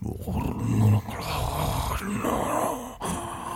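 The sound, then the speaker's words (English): A voice imitates a deep, guttural growl, a low rumbling snarl that swells and rasps continuously for a few seconds, loud and rough with a gravelly texture. “And from deep beyond the door, you hear this guttural, deep sound, just like a.”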